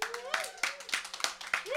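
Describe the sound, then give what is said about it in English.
An audience claps in short, uneven bursts of sharp hand claps, responding to a host's question, with voices calling out over the applause, lively. “So real quick round of applause. Who is familiar with our little rinky-dinky podcast?”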